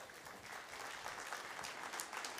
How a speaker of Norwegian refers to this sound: Halleluja, var ikke det bra? Halleluja, vi må gi deg en god klapp.